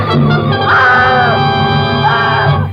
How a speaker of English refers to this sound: And then she threw up her hands and shrieked.